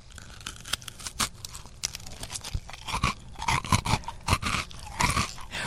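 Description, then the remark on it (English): Someone bites into a crunchy homemade gluten-free chocolate chip cookie made with rice flour, followed by a steady series of crisp, crackly crunches as they keep chewing, with no talking. “We like a crunchy cookie in our house.”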